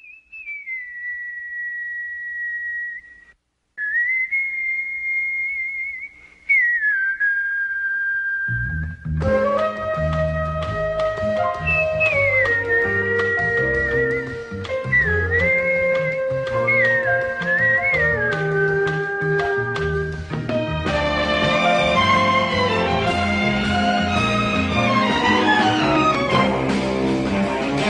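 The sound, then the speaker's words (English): The theme tune of the TV show Kolchak: The Night Stalker opens with a lone whistled melody of long, sliding notes; after a few seconds a full instrumental band joins, and the whistling carries on above an increasingly busy, loud arrangement. “But our number one pick is a show with a very malleable theme song, a show that establishes a great sense of multiple tones contrasting.”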